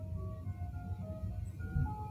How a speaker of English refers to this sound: I don't know if you're picking this up on the mic, but there is an ice cream truck right outside my window just playing that. Let's see if I can bring this mic closer.